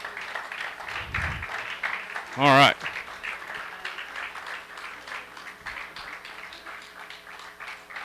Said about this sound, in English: Y'all got to keep clapping. I mean, you can't let the clap die out. Come on.